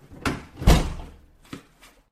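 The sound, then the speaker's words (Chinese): A door is pushed shut with a loud, low thud, followed by a couple of lighter clicks and knocks as the lock is turned. No voices are heard. “请进，把门反锁一下。”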